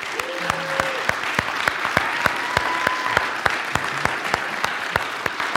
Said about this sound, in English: So can I just have you all first just give a round of applause to those that helped?